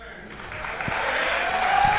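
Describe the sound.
A short burst of light applause, a steady patter of hands clapping that swells slightly over two seconds, with a faint voice murmuring underneath.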